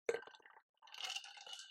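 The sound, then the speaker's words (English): A sharp clink of a drink container rings out and fades, then after a brief pause comes a steady, hissy slurp of someone sipping a protein drink, with no talking. “Let me take a sip. Hold on. Of my little protein drink.”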